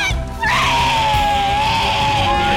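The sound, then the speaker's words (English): A loud, sustained celebratory debt-free scream, as heard on the Dave Ramsey Show radio broadcast, bursts in after a brief pause and holds at high pitch for about two seconds, intense, with a few voices joining in the shout. “Let's hear a great debt-free scream.”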